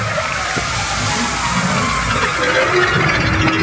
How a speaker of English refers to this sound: To me, that always sounded like somebody's in a hover car and they're speeding up, speeding up, speeding up, and then they just slam into a brick wall and everything stops. Yeah. Or it could be the time transporter, and that's what it sounds like.